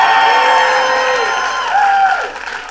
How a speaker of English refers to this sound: Extra pause for applause.